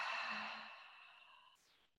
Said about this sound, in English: So a deep breath in through the nose, letting the lips part and breathing out through the mouth.